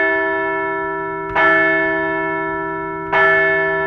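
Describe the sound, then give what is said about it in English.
A large church bell rung to mark Phillies designated hitter Bryce Harper's return to the lineup rings out twice, each stroke about two seconds apart, with a sharp clang followed by a long, sustained humming resonance that carries between strikes. “We're going to ring the bell for the return of MV3.”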